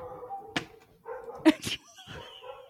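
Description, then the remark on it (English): Dogs bark in a few sharp, loud bursts mixed with higher whimpering and whining, with a brief human voice faintly underneath. “The dogs are out of control today.”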